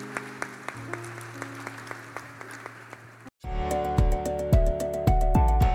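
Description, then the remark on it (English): An audience claps to welcome people, in a steady, rhythmic beat over a sustained musical drone; after a brief gap the applause swells louder and fuller, joined by music with strong low beats. “Give them a clap of you.”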